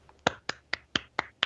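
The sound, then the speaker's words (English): Six sharp hand claps in a quick, steady rhythm, fairly crisp, with no talking over them. “I was almost not going to applaud, even though I said I'm going to applaud you for that.”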